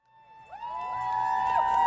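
A crowd murmurs and stirs outdoors on a hot, sunny September day at Frank Ogawa Plaza in Oakland, gathering for a rally with transgender flags held high, a steady wash of voices rising gradually in loudness, with a sustained tonal ringing running through the scene.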